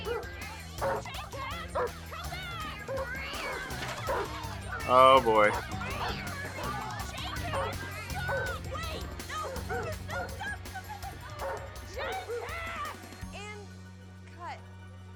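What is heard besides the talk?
dog barking and yipping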